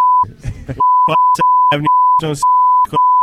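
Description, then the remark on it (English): A steady, loud censor bleep tone runs unbroken for about three seconds, with short bursts of a person's voice breaking through in the gaps. “You're going to hear one big beep.”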